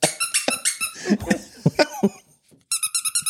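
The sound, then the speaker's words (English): A squeaky dog toy is squeezed in quick rhythmic bursts, a short run of loud high squeaks, then some bumping and handling noise, then another fast series of squeaks. “I decided to get y'all some dog squeaker toys.”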